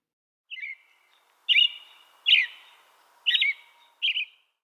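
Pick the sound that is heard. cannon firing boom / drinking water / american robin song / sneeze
american robin song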